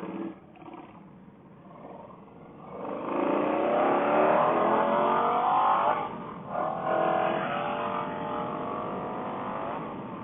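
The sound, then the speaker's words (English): A car engine revs up and accelerates on a road under construction, its rising whine swelling loud over steady road noise before easing back to a lower hum. “And I hate getting stuck in the traffic because people feel like they either are in a wreck and they're like bobbing and weaving in the two lanes that are available, or they're crawling.”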